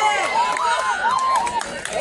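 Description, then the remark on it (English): A crowd cheers at a baseball game after a base hit drives in a run, a dense, steady roar of many voices with rising and falling shouts on top, loud and continuous for about two seconds. “The crowd goes nuts.”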